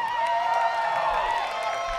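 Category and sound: crowd, audience clapping and cheering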